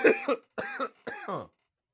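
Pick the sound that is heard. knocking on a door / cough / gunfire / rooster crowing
cough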